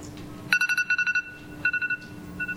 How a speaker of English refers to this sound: It's in 5 seconds, actually. You're going to hear my timer go off. It's pretty fun. Hang on. This is what I do when I cook.